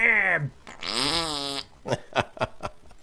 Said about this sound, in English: Yeah, and you got your neighbors that blow booty. They're always farting.